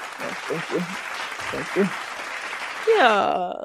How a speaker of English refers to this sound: Let's do a clap for that.